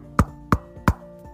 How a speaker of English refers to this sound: As they arrived at the professor's house, they knocked on the door.